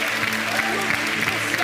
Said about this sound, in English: Somebody take 30 seconds, clap your hands and speak in tongues.